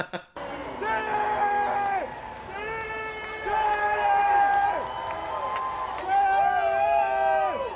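A man in a concert crowd at Riverbend in Cincinnati screams the same drawn-out song request three times in a row, his loud, strained shouts rising over a steady roar of crowd noise.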